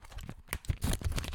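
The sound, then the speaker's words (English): Papers rustle and crinkle inside a sack of mail in quick, irregular bursts, moderately loud, with no voices over the sound. “You can hear the papers rustling around.”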